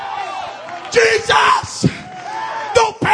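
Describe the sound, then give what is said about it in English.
A large crowd at the Apostolic Youth Conference shouts and yells "Help!" together, loud, with several surging bursts of voices rising and falling over a continuous roar of noise. “It's time to scream, help! Help! Help!”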